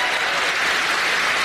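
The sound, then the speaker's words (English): Steady crowd applause at a political rally in a high school gymnasium about a fourth full, a dense wash of clapping at constant loudness with no pauses. “he was in a high school gymnasium, about a fourth full. I swear they juiced the audio”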